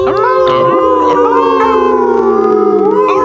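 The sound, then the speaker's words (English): A human voice imitates a wolf's howl, a long sustained wavering tone that slowly glides down in pitch, loud with no talking. “I started to howl.”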